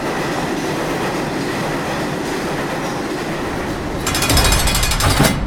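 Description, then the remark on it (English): A subway train heading to Rikers rumbles steadily along the rails, loud, with a rhythmic clatter underneath and a harsher metallic rattle swelling near the end. No one speaks. “not realizing until halfway through the train ride to Rikers”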